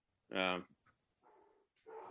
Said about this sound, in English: I feel like... Particularly if my dog stopped barking in the background, so... Well, you know, babies crying, dogs barking.